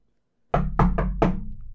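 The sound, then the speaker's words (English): Four heavy knocks on a door in a slightly uneven rhythm, each a sharp hit with a deep, booming low end that rings on between strikes. No voices accompany them. “Come on in, boys, the door is open! It's still locked!”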